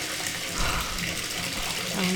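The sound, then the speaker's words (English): Water sloshes and laps steadily in a filled bathtub as a woman sinks down into the cold water up to her chin, with a continuous soft splashing wash that swells slightly midway and again near the end. “Orly sunk down into the water until it was covering her entire body up to her chin.”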